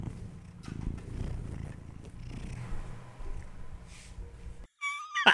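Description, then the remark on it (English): A cat purrs with low rumbling and soft thumps and rustles as it rubs its face against the microphone, then a brief bright meow near the end. “He's just now rubbing his face on the microphone.”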